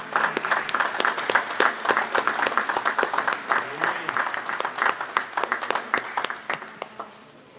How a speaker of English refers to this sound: Moms, stand up. Ladies, stand up in the church. All the ladies of the church, stand up, please. Let's give these folks a hand of applause.